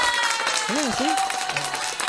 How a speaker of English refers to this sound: We got a laugh track. I mean, a applause track now.